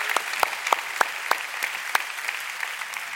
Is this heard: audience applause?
yes